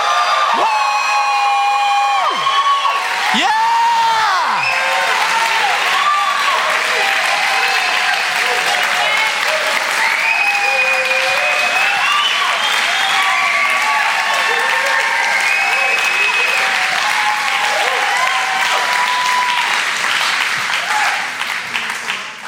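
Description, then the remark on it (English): A large audience at a church service erupts in sustained applause and cheering, with whoops and high shouts rising over steady clapping for about twenty seconds before it starts to fade. “Give a big cheer. Let's hear what it sounds like.”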